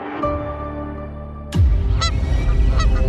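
Several geese honk loudly, their nasal calls repeating over a busy, noisy background that swells partway through after a steady low hum.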